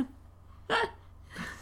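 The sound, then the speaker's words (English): A person imitates snuffling and bubbling into tea: two short, breathy, gurgling bursts, the first loud and sharp, the second softer, with no talking. “Shove my nostrils in there. Snuffle it all up. Bubbles.”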